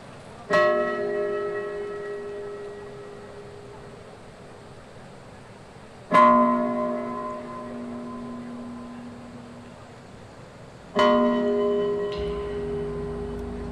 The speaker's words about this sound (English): At the opening ceremony of Chengdu Fisu World University Games, the sound created by a piece of stone chime known as the Qing kicked off a series of cultural performances.